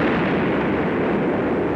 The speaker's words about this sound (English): There is war and rumor of war. The unknown aircraft passed over Sea Beach and dropped bombs.